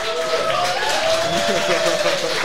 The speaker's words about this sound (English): round of applause.